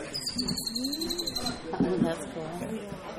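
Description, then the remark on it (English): Birds call in the background during breakfast on a beach on a morning of about 80 degrees, a thin high whistling trill through the first half, over low cooing-like tones and an indistinct murmur of voices at moderate, steady loudness. “Hey, get your birds in the background.”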